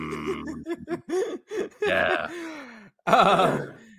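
One person makes groaning, raspy vocal noises, then two harsh bursts of coughing and throat clearing, with no speech.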